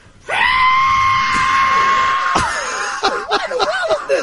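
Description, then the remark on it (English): A voice mimics a shrill, screeching whistle, a sound between a screech and a whistle, holding one piercing high note for about two seconds before breaking into a few short, wavering squeals. It is loud. “A screeching. Saw that between a screech and a whistle.”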